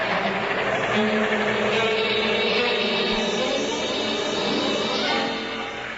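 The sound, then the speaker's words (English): A boat engine drones steadily as the vessel eases into its slip, a loud, continuous rumble with a hissy wash that tapers off slightly near the end. “We're just coming into the slip.”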